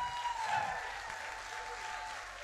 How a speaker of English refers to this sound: Somebody give the Lord a clap and a shout.